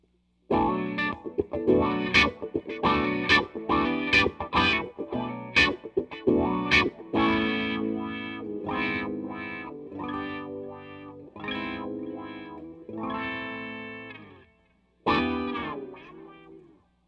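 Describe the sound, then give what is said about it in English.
An electric guitar plays through a wah pedal, the fourth of several pedals tried, opening with quick rhythmic strummed chords and moving into sustained notes that sweep in tone, heavily effected, with no talking. “Here we go with pedal four.”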